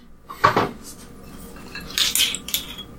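Someone gets something from the fridge, with a few clinks and rattles of dishes and cutlery in short bursts, loudest near the start, then another cluster of bright clatters. No one speaks.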